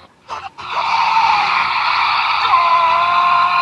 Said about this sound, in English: That's my ringtone.